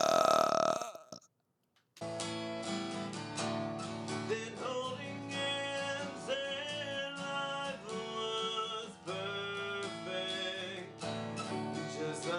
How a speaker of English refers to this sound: Can you burp? Oh, yeah, I can burp on command. Hold All right, do a really good burp right into the mic, and then I'll end the episode.